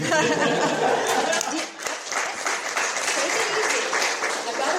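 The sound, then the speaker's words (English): A crowd applauds steadily, a dense wash of many hands clapping with some laughter and chatter mixed in, holding at a fairly loud, even level throughout. “So you guys don't need to clap.”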